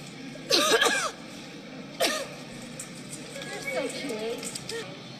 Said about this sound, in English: did you guys see the chick in Nebraska who was coughing on shoppers at a supermarket?